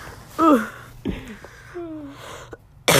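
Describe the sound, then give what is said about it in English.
A person coughs, a few short throaty, voiced bursts building up to a sharp, loud cough at the end, with no talking. “Stop, don't cough on me.”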